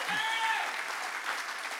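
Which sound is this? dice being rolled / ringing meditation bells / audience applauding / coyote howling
audience applauding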